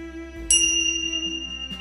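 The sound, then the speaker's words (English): Dragon tingsha bells are struck once and ring out with a bright, shimmering metallic tone that sustains and slowly fades over a soft low background hum, with no talking. “Today I'm going to be starting with my tincture bells, so to get some negativity out and to get some of the stress away.”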